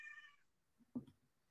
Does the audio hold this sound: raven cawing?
no